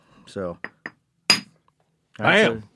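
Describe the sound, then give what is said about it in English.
A single sharp, ringing crack of a hammerstone striking a stone nodule in one hit to knock off a flake, loud, with brief voiced exclamations before and after the blow. “So he took one hit and knocked off like a chocolate chip cookie off there.”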